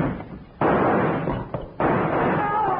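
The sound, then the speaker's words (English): Two sharp, loud gunshots from a gun rigged as a trap, with a rawhide cord looped around its trigger and yanked, ring out about a second apart, each followed by a dense lingering roar of echo that fills the space until the next blast. “Oh, it worked, Bill. He fired at the first line.”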